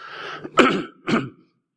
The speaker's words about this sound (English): Excuse me. Just move away from that and have a cough.